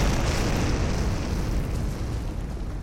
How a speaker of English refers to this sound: And you look as this creature starts to roar out, confused and frightened. And it crouches down and leaps up, smashing through the ceiling.